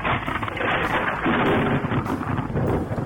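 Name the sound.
thunder crack sound effect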